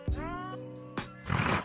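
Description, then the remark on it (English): A rhino grunt sound effect: two short, deep, droning bellows followed by a rough, breathy snorting burst, loud, with no talking over it. “Rhino grunt right there.”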